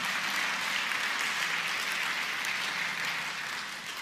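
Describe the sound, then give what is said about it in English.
A steady wash of audience applause for the people working on the sound system, dense and even for about four seconds before easing off slightly at the end, with no voices over it. “We should applaud the folks who are working as hard as they can right now on this.”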